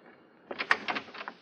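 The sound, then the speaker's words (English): A door opens as someone enters without knocking, after a quiet moment, with a cluster of short rattling, clattering knocks from the handle and frame over about a second, and no one speaking. “Oh, I forgot to knock. I'm terribly sorry.”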